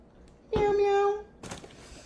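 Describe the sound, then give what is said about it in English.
A person voices a loud, drawn-out imitation of a cat's meow, held at a steady pitch for about half a second, followed by a brief breathy noise. “And was she answering every question with a meow?”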